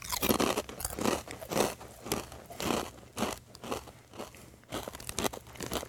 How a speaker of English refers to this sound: Apologizing for the loud crunching here, because we've got some kettle chips going on. And if you know anything about kettle chips, these are like jawbreakers. They're the crispiest chips out there.